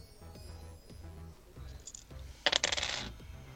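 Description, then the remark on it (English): A d10 and a d8 clatter and rattle across a hard table in a short, bright burst of several quick clicks during a stealth roll, over a low steady background hum. “I hear dice.”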